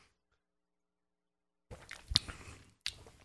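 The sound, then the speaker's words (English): After a long silence, wet gulping and slurping sounds of Jones Soda turkey and gravy flavored soda being downed whole on a count of three, with a couple of sharp squishy swallows standing out. Nobody speaks. “Let's try this Jones Soda turkey and gravy flavored crap.”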